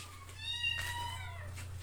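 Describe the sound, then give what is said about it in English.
Cats meowing, with one long, drawn-out, wavering meow that rises and then trails off, over a steady low background hum. No one speaks. “Oh, God, guys, the cats. Can you hear them?”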